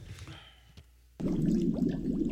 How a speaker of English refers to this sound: Some people go by there and there's great big bubbles. Well, it's undeniably an interesting sound, isn't it?